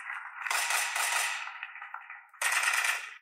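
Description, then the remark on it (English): A voice in a song on a Christian album mimics rapid gunfire with harsh, hissing bursts: one long rattling spray, a brief lull, then a second burst, loud, with no speech. “Doing gunshots for a fucking Jesus album.”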